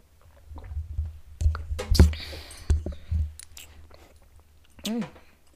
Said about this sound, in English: I'm going to take the shot. Okay, all right, let's do it. And rum is going to F me up. So when I take the shot, yeah, I'm going to put the microphone down and drink some water immediately after. Immediately.